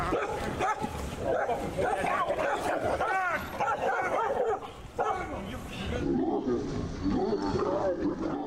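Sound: dog growling and barking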